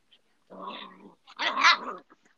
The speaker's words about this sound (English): Oh my God, is that your dog? She's a little hyper right now. Oh boy, she's going at it.